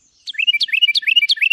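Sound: small songbird singing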